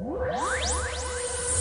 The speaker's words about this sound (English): Are you okay with whooshing noises? Yeah, I like whooshing noises. One of my favorite whooshing noises is this one